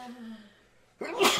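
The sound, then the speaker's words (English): A single sharp sneeze bursts out after a brief quiet moment, loud and breathy with a hissing spray of noise. “I gotta sneeze, like, really bad, but...”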